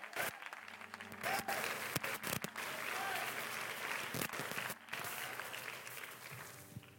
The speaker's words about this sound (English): I wish I had an amen in here. I got 15 hand claps.